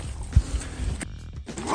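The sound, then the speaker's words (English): A cougar lets out a low, rough growl with a breathy, hissing edge, lasting under two seconds amid rustling, scuffing noise and a brief thump early on. “You can hear it. You can hear the cougar”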